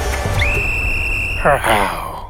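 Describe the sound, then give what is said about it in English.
A person imitates a baby tiger cub with a short, high, whiny mewling squeal, preceded by a thin, steady whistle-like tone held for about a second. “I'm trying to do a baby cup and sound actually. A baby tiger sound.”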